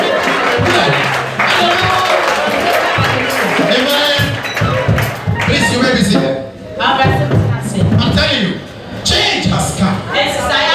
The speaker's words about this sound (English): Clap your hand and say, hallelujah.